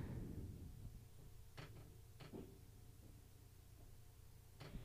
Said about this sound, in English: Drawers.